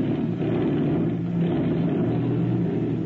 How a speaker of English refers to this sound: Tonight, a Gestapo agent has arrived at the Mexican ranch from where he'll be flown over the border and dropped into Texas. The airplane has been pushed out, is about to take off from the ranch.